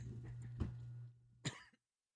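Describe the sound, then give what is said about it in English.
Two sharp, dry coughs from one person, about a second apart, the second louder and raspier, over a low steady hum that cuts off near the end. “My gosh, this ear thing is really bad, and I'm coughing constantly.”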